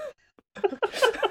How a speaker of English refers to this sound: That was a gasp of recognition.